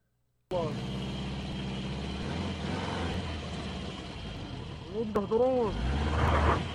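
A vehicle engine rumbles steadily, then revs in a couple of quick rising-and-falling pitch sweeps as the vehicle rolls toward a woman walking with a cane, the engine noise growing a little louder toward the end.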